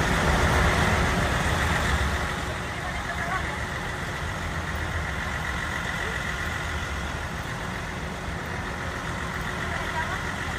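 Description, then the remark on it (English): A bus from Texas carrying about 30 migrants, many from Venezuela, to the vice president's residence idles with a steady, low rumble that stays fairly loud throughout, a slight drop after the first couple of seconds, with indistinct voices mixed into the background noise. “the Texas bus going to vice presidential resident”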